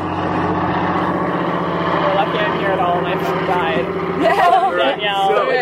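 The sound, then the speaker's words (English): A boat engine runs steadily with a constant low, throbbing drone as the boat moves slowly away from shore, while voices talk and call out instructions over it, growing louder toward the end. “Now you'll hear the sound of the engine.”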